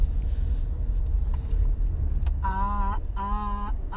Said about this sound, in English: Traffic is really like this, huh? This is not even terrible